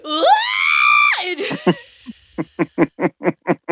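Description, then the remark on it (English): A person lets out a loud, drawn-out frustrated scream lasting about a second, which trails off and gives way to a string of quick, rhythmic laughing bursts. “And I just wanted to scream because that's noise.”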